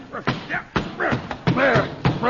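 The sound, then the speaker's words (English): A series of sharp, heavy thumps, about five or six blows struck in quick irregular succession, an umbrella under a chair being beaten as if it were a snake, with excited voices mixed in between the hits. “You have just killed Mr. Chalmers' umbrella.”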